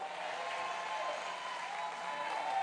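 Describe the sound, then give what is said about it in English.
A crowd claps lightly and politely, a soft, steady patter of many hands that holds at an even, fairly quiet level for a few seconds, with no cheering or talk. “I'm not talking about a golf clap.”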